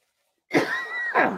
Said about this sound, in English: Man, sorry about that. I should mute it when I have to hack and cough like that.